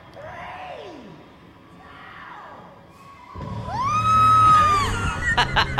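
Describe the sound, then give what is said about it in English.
A woman rider screams on the Rock and Roller Coaster: a few falling wails at first, then a loud, sustained rising shriek over roaring rumble and rushing wind as the ride speeds up. “on Rock and Roller Coaster. Let the screaming commence.”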